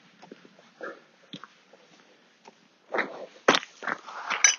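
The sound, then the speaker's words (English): A trowel scrapes and flicks stones off the ground in a field: a few faint gritty clicks at first, then a run of louder, sharp scraping bursts and rattles toward the end. “I'm taking off some stones with the trowel there. You probably heard that flicking motion.”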